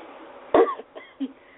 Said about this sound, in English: Excuse me for coughing.